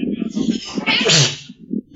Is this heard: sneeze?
yes